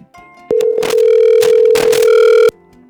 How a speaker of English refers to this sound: Are you going to try it now, or? Here it goes. I just don't hear anything is all. Oh, it's ringing.